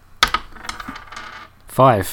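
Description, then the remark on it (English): Dice are rolled in a game of snakes and ladders, clattering in a quick burst of sharp clicks and skittering taps that settle within about a second and a half, then a voice briefly speaks. “So you can roll again now.”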